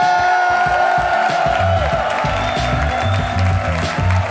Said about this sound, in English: Lord knows he needs to hear you give him some claps when he gets out here. Ladies and gentlemen, the mayor of Harmontown, Dan Harmon!